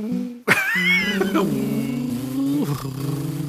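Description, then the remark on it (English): A person imitates a car engine with their voice: a sharp burst, then a steady, buzzing low hum that rises and drops in pitch like gear changes, continuing without pause for a few seconds. “Well, you really do a fantastic car emulation there”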